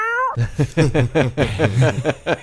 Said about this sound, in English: I love that cat. I bet you do. I love that cat.